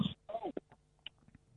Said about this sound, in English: You want to get that cough?